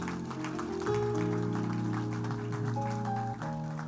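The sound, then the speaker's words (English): An audience claps in a steady, lively patter over sustained organ or keyboard chords that hold and shift pitch, the music and clapping both fairly loud throughout. “Oh, clap for me small.”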